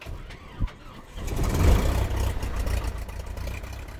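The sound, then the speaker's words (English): The engine of an experimental Super Cub, a lightweight two-seat light propeller plane, starts in southeastern Utah: a brief knock, then the motor catches and swells into a steady, loud low rumble that keeps running to the end. “I'm in his two-seat plane. It's called an experimental Super Cub.”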